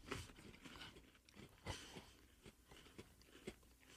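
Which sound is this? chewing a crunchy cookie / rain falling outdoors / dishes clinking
chewing a crunchy cookie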